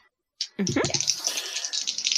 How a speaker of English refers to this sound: Oh, wait, I didn't roll it in the dice tray.